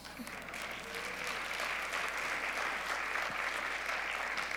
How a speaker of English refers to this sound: But if you're going to applaud, applaud for my daughter, because she's the one giving me a kidney.